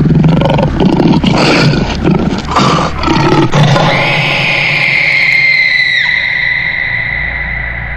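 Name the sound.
lion roaring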